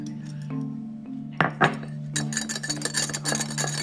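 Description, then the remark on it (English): Whisking coffee in a bowl with a whisk to make whipped coffee: a couple of sharp clinks, then a fast, continuous run of metallic ticking and scraping against a steady low hum, with no one speaking. “Constant whipping.”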